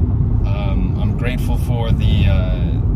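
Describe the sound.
A steady, heavy low rumble of road noise fills the cabin of a moving electric car, continuous and fairly loud, while a person speaks over it.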